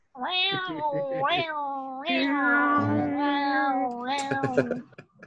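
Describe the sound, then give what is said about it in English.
A voice imitates a cat with long, drawn-out yowling meows that rise and fall in pitch, loud, running for several seconds with only brief breaks. “We just broadcast yowls for 30 minutes.”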